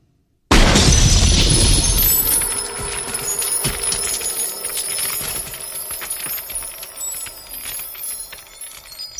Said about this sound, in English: this incredible shot where they cause the big rig to explode as Arnold goes like tumbling off of it into the steel mill where the T-1000 gets a big wave of liquid nitrogen and freezes, and then Arnold shoots him and he shatters.